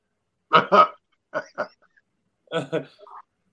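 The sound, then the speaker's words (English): A person imitates a dog's bark, giving three quick pairs of loud woofs spaced evenly apart with short pauses between them. “He had one video that did 90.7 million by barking at his dog.”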